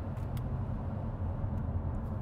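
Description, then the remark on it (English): Steady low rumble of another passing car's tires rolling on pavement, a constant roar at moderate volume with no speech, heard from inside a very quiet car with its fans turned off. “I hear the other car's tire noise.”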